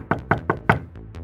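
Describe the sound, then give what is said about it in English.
Four quick, evenly spaced, firm knocks on the wooden door of a house, followed by a brief hush with only faint traces of sound. “I knocked on the door, but no one answered.”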